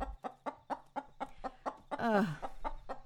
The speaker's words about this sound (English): Fine, there's a chicken in the bathroom now. Oh, fuck, shit, there's a fucking chicken in here. There's a fucking chicken.